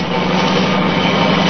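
A loud, steady roar of a car engine running at high speed at night, continuous, with a dense rushing noise and no voices.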